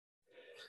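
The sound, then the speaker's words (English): A single sneeze: a sudden, breathy burst of hissing noise that lasts about half a second and cuts off abruptly, with no talking around it. “Bless you.”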